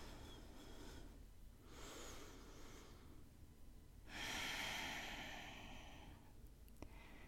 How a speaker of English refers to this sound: Breathing in and out. Giving yourself this gift.